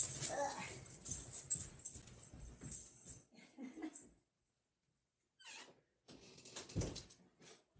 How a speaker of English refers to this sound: One of my dogs likes to humph at me. You know, just sits there and grumps like hoof, hoof.